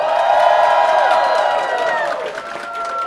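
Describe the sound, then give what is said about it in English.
A large convention crowd at New York Comic Con screams and cheers in a loud, sustained roar, with high-pitched shrieks and whoops layered over clapping that gradually eases off. “Scream for us, New York Comic Con.”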